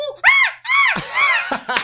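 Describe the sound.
A person imitates jungle bird calls with a run of loud, high, warbling whoops that rise and fall in pitch, about four bursts in quick succession.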